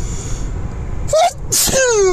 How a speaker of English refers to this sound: Wow! I just covered my recording device with sneeze. Yes, that was a live and in-person sneeze. I have like a little bit of a hay fever, but I'm okay.